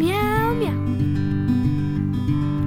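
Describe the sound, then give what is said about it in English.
A voice imitates a cat's meow in a sung story about travelling to Bremen town, a drawn-out gliding cry at the start, followed by a steady, sustained musical backing that carries on to the end at moderate loudness. “Meow, meow, meow, meow.”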